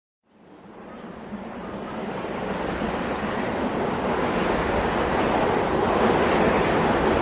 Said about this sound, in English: This is terrific wind, Watson! Yes, quite!